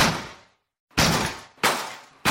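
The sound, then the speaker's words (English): A storm door is kicked four times in quick, uneven succession, in a test after slamming it over and over failed; each loud, rattling bang fades into a brief metallic shudder before the next blow lands. “And when that didn't work, we tried kicking it.”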